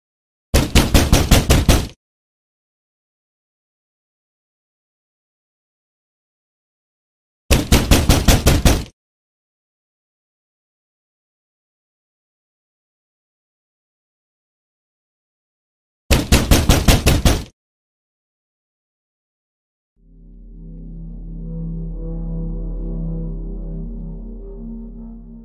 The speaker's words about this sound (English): The nicer they were to Annabelle, the more things escalated. They started hearing knocking sounds all around the apartment.